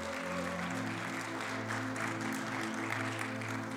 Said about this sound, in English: Just real quick, can we give all those, whether here or on their phones, a hand of applause for making that decision today? Thank you.